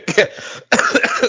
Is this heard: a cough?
yes